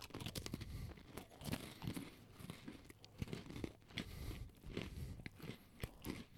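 Crunching and chewing of crisp Oreo cookies by two people eating at the same time over the mic, a steady run of sharp bites and crackly mouth sounds, with no talking.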